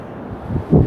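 Ocean waves wash against the shore in a steady low rumble, swelling louder toward the end as a wave breaks. Wind noise hisses faintly over the mic, and no one speaks.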